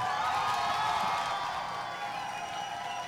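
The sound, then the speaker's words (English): A large crowd cheers and applauds continuously, a dense, steady roar of many voices and clapping that holds at an even, fairly loud level throughout. “I just love the crowd, man. I love it. Man, let them play.”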